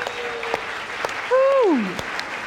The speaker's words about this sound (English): That was not an exciting applause.